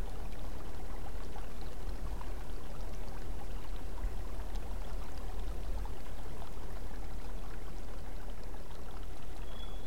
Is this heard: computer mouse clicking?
no